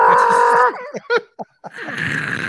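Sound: goat screaming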